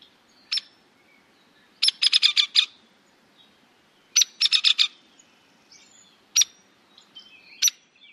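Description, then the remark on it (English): Sharp, loud bird calls of a Hairy Woodpecker: single peek notes and quick bursts of four or five rapid notes, repeated at irregular intervals over a quiet background. “And Harry Woodpecker.”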